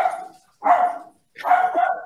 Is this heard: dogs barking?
yes